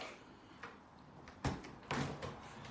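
A door opens as guests arrive: a sharp clunk followed a moment later by a longer scraping rattle, fairly quiet, over faint background noise with no voices.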